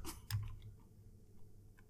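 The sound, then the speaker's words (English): Soft, irregular computer keyboard typing in the background as someone retypes a password: a quick burst of clicking keys at the start, then a couple of isolated taps, faint, with no one talking. “Is that a keyboard sound that I heard in the background?”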